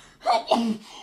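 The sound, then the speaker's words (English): A loud sneeze in two quick bursts, a voiced intake followed by a sharp, breathy explosion, caused by a cold nose in winter, with no talking around it. “Bless you. Holy crap.”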